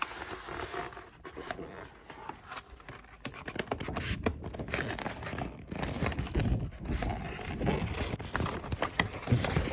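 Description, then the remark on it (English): Wrapping paper crinkles and rustles continuously as it is wrapped around an object, with irregular crackling bursts and scrapes as the sheet is handled and folded, no voices present. “Okay, let's wrap this around you and see.”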